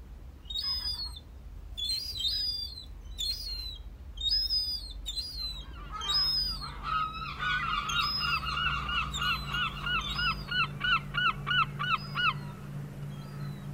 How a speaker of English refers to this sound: And that, I think, is exactly the sound that Laura's talking about, the iconic sound of the Isle of Man, a herring gull squawking, honking, calling, what you will, calling from a wall somewhere around the outside or down by a shore somewhere.